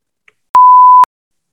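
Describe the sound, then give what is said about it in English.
A single loud, steady censor beep at a mid pitch, lasting about half a second, with clean abrupt edges and silence before and after. “We might have to cut that or just beep it out.”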